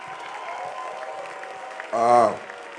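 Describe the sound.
Sustained audience applause as a standing ovation: a steady wash of clapping from a crowd at moderate volume, with a voice briefly rising over it near the end.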